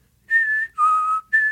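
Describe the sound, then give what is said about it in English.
A short, clear whistled phrase of three sustained notes, the middle one lower and slightly breathier like a quick inhaled note, with no talking. “And just that one note is an inhaled note.”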